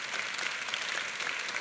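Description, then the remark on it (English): Quiet, polite applause, a golf clap: a soft, steady patter of many hands clapping evenly for under two seconds with no voices over it. “And the rest of those couple thousand loose bricks, oh, golf clap.”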